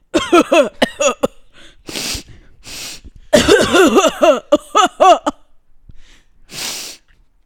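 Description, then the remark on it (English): A man's voice theatrically imitates a sick man on the subway with a bout of coughing and sneezing, strained vocal bursts, sharp exhaled blasts and breathy gasps in between, loud. “Did you just sneeze on me?”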